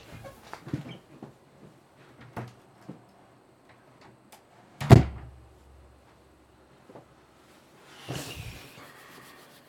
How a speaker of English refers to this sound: Can I just excuse me a moment while I just close my office door? Would that be okay? Okay. Thank you. One moment.